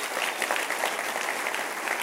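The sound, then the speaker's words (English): A church audience claps together for news that over 2,000 people found Jesus at its services, in a steady, dense wash of applause, with many overlapping hand claps forming a continuous crackle at an even moderate loudness. “Just this summer, you can clap for that.”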